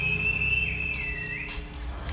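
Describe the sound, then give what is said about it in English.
A movie theater audience reacts to the Joker reveal in The Dark Knight: a long, shrill whistle holds a high pitch, dips lower and swings back up, over a steady wash of crowd cheering, with no clear speech. “That's some cheering.”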